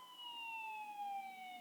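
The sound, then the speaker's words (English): A single steady siren wail, probably an ambulance, whose pitch slowly sinks as it seems to pass by; fairly faint, with no voices over it. “There's your grace ambulance.”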